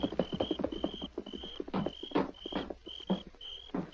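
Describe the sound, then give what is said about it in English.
Horses' hooves clip-clop in an uneven walking rhythm as the horses, one called Silver, are led around the corner of a house, while crickets chirp steadily in the background of a quiet night. “Get the horses around the corner of the house so they can't be seen from the cafe.”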